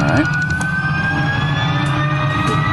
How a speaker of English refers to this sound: we have the fastest electric car in the world.